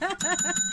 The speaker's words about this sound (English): Ring me the bell, brother.